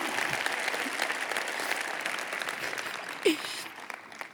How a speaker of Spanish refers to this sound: Dale un aplauso a Dios por esa payasada que acabamos de hacer.